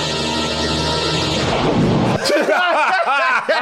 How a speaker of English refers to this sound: So that's an explosion, but ain't no big ass explosion. I can tell you that right now. Right. Yeah. That RC plane they got. Yeah, that tried to be slick. Yeah. And it just completely blew up from touching the ground.